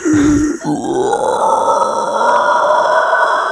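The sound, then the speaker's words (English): A person imitates a pig squeal: a short low grunt, then a loud, sustained, raspy high-pitched squeal that holds steady for about three seconds, with no words spoken. “But that was my pig squeal there.”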